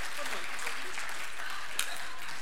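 A crowd applauds steadily, a dense wash of many hands clapping at an even, sustained level throughout, with no individual claps standing out.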